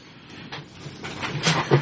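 A third drawer holding a body slides open with a rough, scraping rumble that builds over about two seconds, ending in a louder clunk. No voices are heard.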